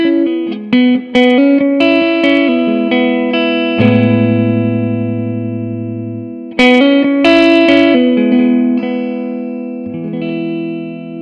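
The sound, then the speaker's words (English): An electric guitar plays picked notes and sustained chords through a room reverb pedal set to its studio room setting, adding a short, natural ambience, each phrase ringing out briefly before decaying; no voices. “Parameter two right now is set on studio, so you're going to get an idea of what a studio room would sound like.”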